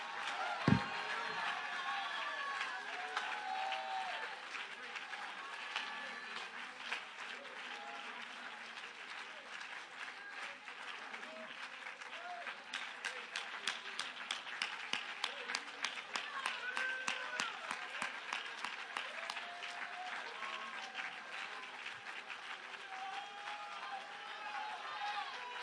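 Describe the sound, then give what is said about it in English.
A church audience on its feet claps and cheers loudly for about twenty-five seconds, shouting that Jesus is in charge of the church, a dense wash of applause with shouts and whoops mixed in, the clapping swelling into a sharper rhythmic beat partway through. “If you believe the church is the powerful church of Jesus, jump to your feet, clap your hands, and shout to the top of your voice, Jesus is in charge of the church.”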